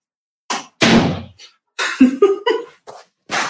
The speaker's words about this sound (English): Here comes my husband, so I'm going to shut my door.